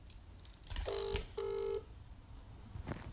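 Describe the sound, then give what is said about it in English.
Someone dials a mobile phone number: two steady electronic tones sound in quick succession, each under half a second, clear, with no talking over them. “Why are you ringing a mobile number?”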